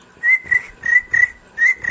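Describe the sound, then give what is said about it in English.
A person imitates crickets chirping with their mouth, making five short, steady, high whistled chirps in an even rhythm, with brief quiet gaps between them and no speech. “That's about as good as I can do with sound effects. Crickets.”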